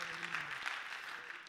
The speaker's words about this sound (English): I wonder if we could clap our hands.